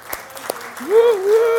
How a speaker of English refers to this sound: Everybody clap it up